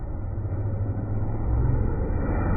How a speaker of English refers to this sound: Oh, it's like a motorcycle. It fucking hit those people pretty good.